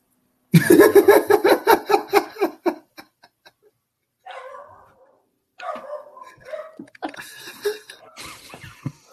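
dog barking

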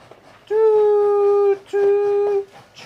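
train whistle sound effect

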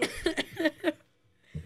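coughing

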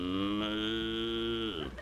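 cow mooing

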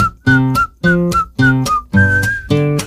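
person whistling a tune

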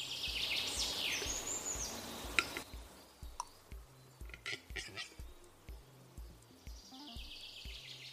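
pet bird chirping

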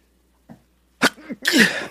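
human sneeze

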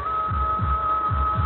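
heart beating

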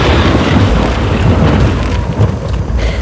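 thunder

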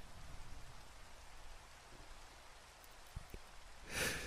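steady rain falling

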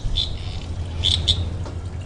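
frogs croaking

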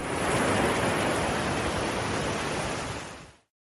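electric fan running

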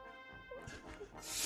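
dog whimpering and yipping

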